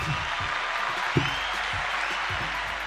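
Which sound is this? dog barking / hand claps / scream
hand claps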